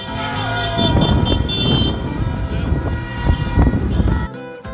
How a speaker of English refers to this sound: The celebratory chant floated in the air, the music notes seemingly joining hands as all those in Strasbourg sang in unison. These were the lyrics, and the honking of passing cars, scooters, and motorcycles, the background music.